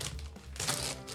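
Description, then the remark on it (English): Crackly rustling of candy cane gift wrapping paper being crinkled and torn open as a gift is unwrapped, a short busy burst of papery crackles with no voices. “I've got like a candy cane wrapping. Wrapping paper, which is awesome.”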